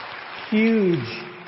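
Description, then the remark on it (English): Steady audience applause for a music ensemble at Asbury forms a dense, crackling wash throughout, with a single voice calling out a short, falling cheer over it partway through. “I think another round of applause is in store.”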